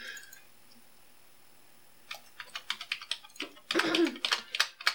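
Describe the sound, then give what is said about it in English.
Quiet at first, then a burst of small, sharp clicks and rattles like dice jingling, growing into a denser clattering flurry near the end, moderately loud. “You can't make a lot of noise because of the recorder. Yeah, like dice jingling.”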